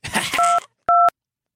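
Two short electronic touch-tone beeps from a telephone keypad, the first partly buried in a burst of noisy background clatter, the second clear and alone, then silence.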